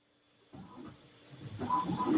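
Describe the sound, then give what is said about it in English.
A printer that started printing by itself whirs into action with a steady mechanical hum, then grows louder as the paper feed engages, rattling and grinding with faint high whines. No one speaks. “I have a ghost printer that just decided to print.”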